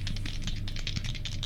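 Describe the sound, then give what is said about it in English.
Dice rattle and clatter in a quick, continuous burst of small hard clicks, moderately loud, with no voices over it, rolled for an insight check that comes up 8. “Oh, my dice need to go to jail.”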